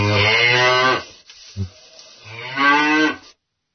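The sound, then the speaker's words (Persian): A cow moos twice, played as a sound effect, each low, drawn-out call lasting about a second, loud, separated by a short gap with a faint grunt between them. No one speaks. “صدای گاو گذاشتی”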